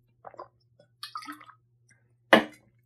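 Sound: drinking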